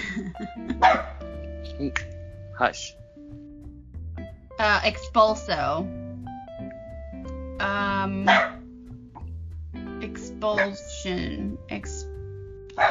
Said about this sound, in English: Whose dog is that? My dog. That was Lunch.